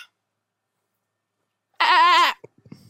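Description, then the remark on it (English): A person does a single loud, wavering bleat in imitation of a sheep, lasting about half a second after near silence, followed by a few faint clicks and rustles. “That was not a great sheep noise, but I tried.”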